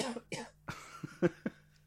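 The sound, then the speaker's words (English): A harsh fit of coughing: two strong coughs, then a quick string of shorter, raspier hacks that trail off, with no talking. “Oh, Jesus, more coughing.”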